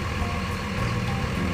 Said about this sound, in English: Let me roll the window up. These diesel trucks are loud.